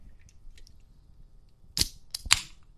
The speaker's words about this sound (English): Here comes the first sip. I'm gonna crack that bitch open. Let me.